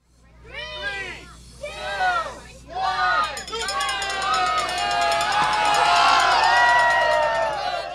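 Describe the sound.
A crowd cheers and yells at children's zucchini races at Zucchini Fest, Homer Farmers Market, Homer, Alaska, as families shelter under tents from the rain after building race cars. High, excited shouts come in bursts at first, then swell into a steady, loud din of overlapping voices and whoops.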